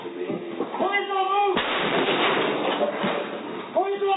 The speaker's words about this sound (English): The grenade explodes in a flash of light and smoke begins to fill the apartment.